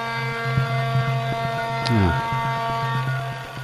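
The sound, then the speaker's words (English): Steady cassette tape hiss from a cassette playing in a living room, over a low, buzzing electrical hum, with a brief downward-sliding warble partway through; no one speaks. “Audio hiss. Cassette tape.”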